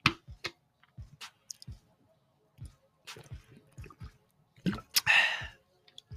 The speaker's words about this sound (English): I had to get a gulp of water for this one, because I'm about to go in on this one.